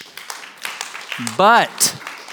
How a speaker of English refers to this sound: So I just want to say thank you. Thank you so much, Body of Christ. This a beautiful community. You can clap for yourself.